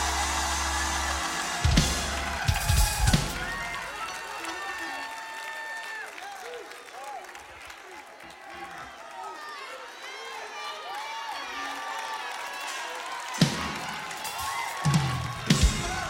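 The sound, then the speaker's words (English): A church audience cheers and applauds continuously at a preacher's call to make noise, a dense wash of clapping with scattered shouts and whoops rising over it, swelling in a few louder bursts toward the end. “Make a little noise in the house.”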